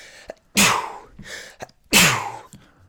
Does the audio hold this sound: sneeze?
yes